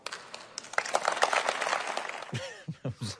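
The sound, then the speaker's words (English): A thin, scattered round of applause after a speech line about modernising central government, claps building briefly for about two seconds at moderate volume, then tapering off as a voice starts speaking. “A slightly half-hearted round of applause there.”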